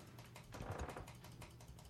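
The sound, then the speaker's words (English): A rapid series of light computer mouse clicks as play is clicked repeatedly, a dozen or so sharp ticks in a fairly steady rhythm, quiet with no voices. “Because you're clicking play too many times.”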